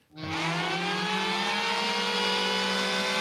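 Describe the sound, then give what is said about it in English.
A race car engine roars in loud after a brief silence, holding a steady, buzzing rev for a few seconds, with no voices present. “For the race car?”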